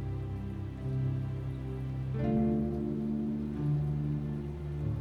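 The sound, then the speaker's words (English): Soft, steady rainfall patters outside, blended with a calm, sustained musical drone that swells gently; no one speaks. “Listen to the gentle rhythm of the raindrops outside.”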